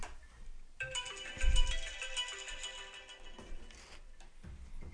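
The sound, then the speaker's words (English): A phone rings with a bright, melodic ringtone playing steadily for a few seconds, clear, with no one talking over it; it is a call coming in to the Union Power Radio show. “Hold on, I got a phone call.”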